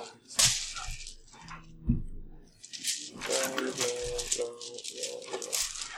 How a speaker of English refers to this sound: Roll a d12.